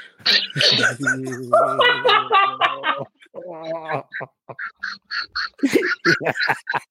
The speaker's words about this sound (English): Yeah, ducks.